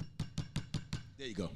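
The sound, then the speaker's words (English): A firm, police-style knocking on a table: five or six loud, heavy raps in a quick, even rhythm, followed by a brief burst of voice at the end. “I need you to do, knock on the table, but do that police knock.”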